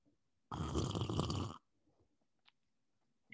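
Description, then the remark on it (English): A single loud, airy slurp lasting about a second as someone sips piping hot high mountain black tea, followed by quiet and a faint brief click. “Let's go in for a sip.”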